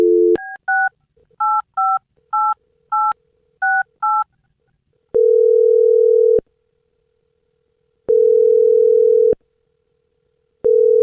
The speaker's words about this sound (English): Okay, I'm going to dial this phone number right now. One sec.